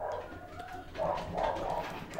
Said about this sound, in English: Wow, that dog. Yeah, we got a dog upstairs.